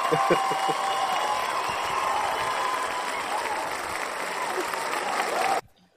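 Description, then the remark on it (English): A sustained wave of crowd applause played as a sound effect, with scattered cheers, steady and loud for about five seconds before cutting off abruptly into silence. “Yo, definitely give them a round of applause.”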